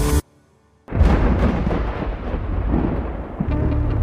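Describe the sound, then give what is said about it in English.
A short tonal blip, a moment of silence, then a huge booming explosion of the moon blowing apart in the sky that swells into a long, loud, roaring rumble lasting to the end, with no voices. “The residents of Midst stop what they're doing in the streets and look up with curiosity at the moon blowing apart in the sky.”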